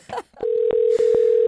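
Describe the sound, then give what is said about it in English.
A steady, loud telephone dial tone hums, interrupted by four quick keypad presses at uneven intervals as someone dials a call, with a brief murmur just before the tone begins. “So, and now it's 20 plus years later, but we're going to call him.”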